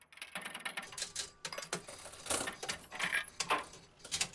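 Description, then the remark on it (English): The Zarthos the Magnificent fortune teller machine, started with a button, whirs and clatters as it dispenses a tiny piece of paper fortune, with a run of irregular mechanical clicks and rattling bursts and no voices. “Like a little tiny piece of paper has come out. It can't be very much of a fortune.”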